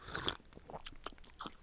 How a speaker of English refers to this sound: Pardon me whilst I sip from my beloved laudanum.